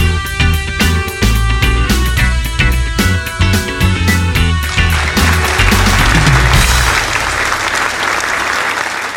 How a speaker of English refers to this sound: That applause is for us today. It's for us because Source Energy is always applauding us, even when we totally mess up, even when we think we're terrible and bad and unworthy.